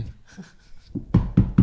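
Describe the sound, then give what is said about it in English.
Three firm knocks on a door in quick, even succession, sharp and fairly loud, following a second of faint low rumbling. “Hold on a second. Let me get the door.”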